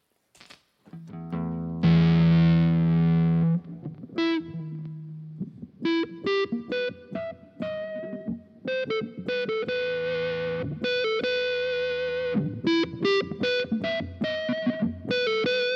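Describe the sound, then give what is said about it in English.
Smooth, sustained electric guitar notes played through effects, singing with a violin-like quality; a long held tone opens, followed by a flowing run of clear melodic notes, with no voices. “You know, it's a very smooth, almost violin like.”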